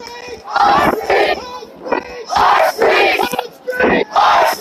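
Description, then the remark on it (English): A large protest crowd chants "Our streets" in loud, rhythmic bursts, voices rising together in repeated shouted phrases with brief pauses between. “Hope y'all can hear me, because this crowd just got deeper.”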